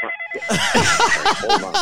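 A phone rings insistently, a steady electronic tone giving way to a rapid run of warbling, chirping ringtone bursts that repeat without pause.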